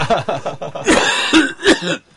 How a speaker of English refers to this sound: Coughing up his morning tea.